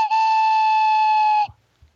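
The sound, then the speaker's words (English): A train whistle sound effect: a single steady blast with a bright, harmonic-rich tone holds for about a second and a half, then cuts off, followed by a couple of faint low thumps. “Anyway, attention passengers. This two-car fantasy train has hit the end of the line.”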